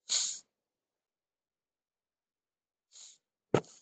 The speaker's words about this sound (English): I have like this sneeze that's coming and it's like not working.